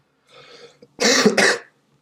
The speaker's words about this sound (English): So, yeah, like I said, I still have a cough. Sorry. I'll try to edit some of these coughs out.